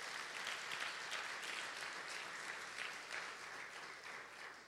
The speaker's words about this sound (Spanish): Entonces, sí, dale un aplauso al Señor, Él se lo merece.